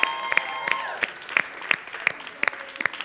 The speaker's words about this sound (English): We can keep these rousing applause going